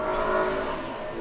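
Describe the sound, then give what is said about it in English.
A car passing by outside, its engine droning steadily, a fairly loud, continuous hum with a faint tonal whine that eases off slightly toward the end. No one speaks. “and a car, apparently.”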